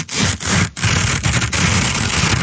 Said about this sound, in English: It's Christmas. Yep, slow tearing of the wrap paper.